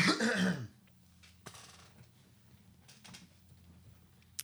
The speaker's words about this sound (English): Okay. Let me just clear my throat a sec.